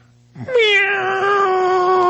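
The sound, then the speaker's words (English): A person imitates a cat howling at the moon with one long, drawn-out yowl that swoops up in pitch and then holds steady, loud, with no other talking. “You ever heard a cat howl at the moon?”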